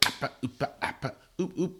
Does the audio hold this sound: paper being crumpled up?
no